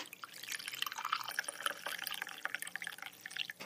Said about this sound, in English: Obviously, the chocolate on the inside is insulating the chocolate on the outside, so it's not melting. And now for the moment of truth, we'll try and pour the tea out of the teapot.